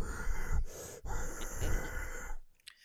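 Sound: imitated heavy breathing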